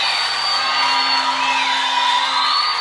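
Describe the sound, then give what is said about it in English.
A large crowd screams and whoops together in a sustained, loud roar of cheering that fills the space for a few seconds without letting up. “Let me hear you scream. Woo!”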